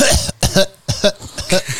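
A run of about five harsh, loud coughs in quick succession, each a short raspy burst with brief gaps between, and no talking.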